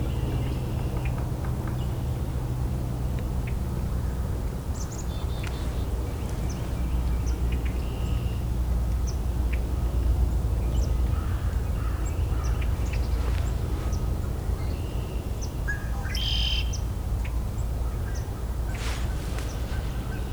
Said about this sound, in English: two red-winged blackbirds above me.